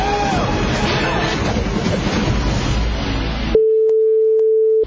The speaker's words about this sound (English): I like the idea of it being beeped, because it could have very easily been the S word, and that could have been the title of the movie.